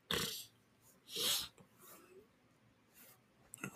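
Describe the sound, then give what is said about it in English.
Several sharp, congested sniffs through a stuffy nose from someone with the sniffles, fairly quiet, spaced irregularly with short pauses between them and no talking. “Oof, I got the sniffles.”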